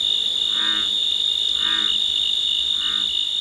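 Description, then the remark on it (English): A steady, high-pitched drone of crickets and cicadas fills a summer night in the Cascade Mountains of Northern California, with three soft, evenly spaced bullfrog croaks rising beneath it. No voices. “Crickets and cicadas form the backdrop to the splashes and croaks of bullfrogs.”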